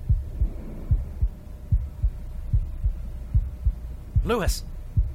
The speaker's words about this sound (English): Your ear, close to the door. By golly. Lub-dub, lub-dub, lub-dub.